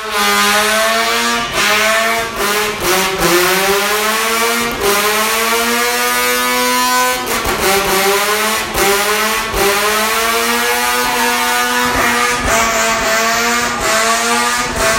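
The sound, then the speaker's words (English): A Mazda RX-7's rotary engine revs hard to motorcycle-level RPMs during a burnout, its buzzing engine pitch climbing and dropping in repeated surges, loud and continuous throughout with no talking. “Yes, that was the rotary engine of the RX-7 cranking up to motorcycle level RPMs.”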